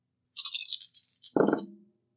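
Five six-sided dice (5d6) for a tabletop game rattle briskly in a shaker or cupped hands for about a second, then tumble out with a short burst of lower clattering before settling. No one speaks.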